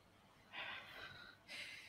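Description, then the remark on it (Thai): A person imitates the heavy breathing of an overheated bird and dog kept together in the heat: two breathy, hissing exhalations, the first longer and rasping, the second shorter, with no talking. “เราก็เหลือเชื่อเลยก็คือว่าทั้งนกทั้งหมานกนี่ก็มีอาการ ร้อนมาก ร้อนนะเขาเปิดให้มันทั้งนกทั้งหมาอยู่ด้วยกันเนี่ยเออหายใจเงียบเฉยเลยเว้ยแม่หายใจแบบ”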